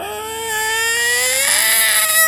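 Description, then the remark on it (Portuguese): A human voice imitates the loud yowl of mating cats: one long, wailing cry held steady, then sliding upward in pitch toward the end, with no other sounds. “Uma coisa que eu tinha medo antes é que Eu não sabia, né, mas gato, quando está no momento do coito magnífico, eles miam muito alto, né?”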